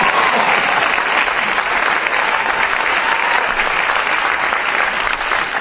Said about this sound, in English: I'm passionate about this, by the way. I think it's important. Yeah, go ahead, clap.